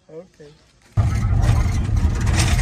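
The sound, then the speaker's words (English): A brief voice sounds, then the engine of a Dodge Hemi pace truck at the races roars up suddenly and keeps running loud, a steady, rumbling drone with a gritty, noisy edge. “Viewers, I am in the Pace truck. It's a Dodge Hemi. I'm glad it's got a Hemi.”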